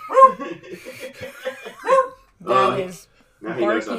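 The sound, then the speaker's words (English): A beagle barks repeatedly in the background, a series of loud, yelping barks and bays coming in uneven bursts with short pauses between them. “I agree, whichever doggo there in the background.”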